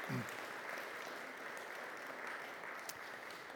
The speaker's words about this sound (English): And I think that that's absolutely fantastic. We give her a round of applause.